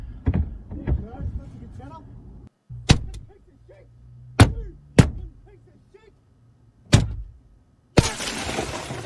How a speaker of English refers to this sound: can you go back to the part where he smashes the window?